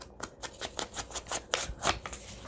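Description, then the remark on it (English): Quiet crinkling and rustling of paper being handled, a rapid series of soft crackly bursts with a couple of sharper crunches near the end, no voices. “Yeah, it's so much fun to play with paper. You know, it's just, it feels good in the hand. Feels crunchy and crinkly and I don't know, like we're making something out of nothing.”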